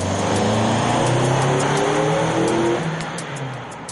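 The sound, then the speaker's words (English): DJ Henry's car revs and accelerates toward where Aaron Hess was standing, in a test conducted by Westchester County Police; its rising engine tones rumble steadily for several seconds before easing off slightly at the end, with no voices present. “In it, DJ's car is shown accelerating to where Aaron Hess was standing.”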